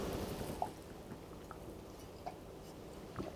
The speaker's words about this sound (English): I'm going to have some water because it is hot.